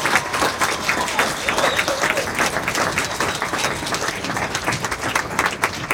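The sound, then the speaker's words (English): A crowd applauds steadily for the full six seconds, giving past board members of the HAA a round of applause, a dense, even wash of many hands clapping at a loud, unchanging level with no voices standing out. “Give these people a huge round of applause.”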